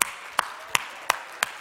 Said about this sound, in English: clap your hands, all you people. Shout unto God with a voice of triumph. You're clapping, you're drawing attention to God.